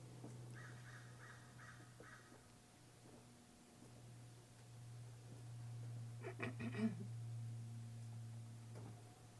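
Birds call outdoors in a short series of faint, harsh caws, followed by a louder cluster of calls, all over a steady low hum with no one speaking.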